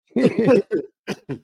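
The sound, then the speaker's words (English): A man coughs fairly loudly: two longer rough bursts followed by three short separate coughs trailing off, with no talking. “Yes, we made him cough again.”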